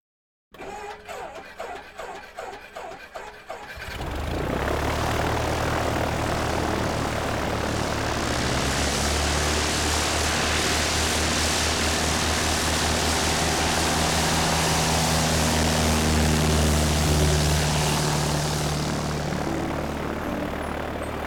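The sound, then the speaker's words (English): A propeller airplane engine sputters briefly, then roars up into a loud, steady drone that holds constant, with a low rumbling hum beneath a broad wash of noise. “So, are we flying this plane or what?”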